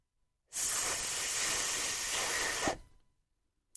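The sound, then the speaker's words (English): A voice holds a long unvoiced TH consonant, a steady breathy hiss lasting about two seconds with no other sound, then it cuts off into silence. “Listen to the unvoiced TH.”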